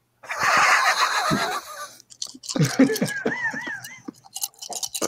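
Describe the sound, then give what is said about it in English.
Pony dice rattle steadily in a cupped hand for about two seconds before a roll, a dense, hissy shaking sound, followed by a voice making wavering, sing-song vocal sounds. “Pony dice. How's that for audio? I'm gonna roll it.”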